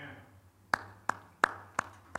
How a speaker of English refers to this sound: But then after baptism, this is our response. Golf clap. That's so awesome.